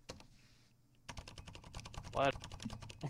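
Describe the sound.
Rapid typing on a computer keyboard, recorded with the microphone moved down toward the keys: a dense run of close, crisp key clicks that starts after a brief quiet moment, with a single short spoken word cutting in partway through.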